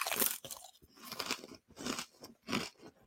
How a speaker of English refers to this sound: Yeah, I don't know if everyone can hear the crunching there, but that was a big, delicious crisp right there.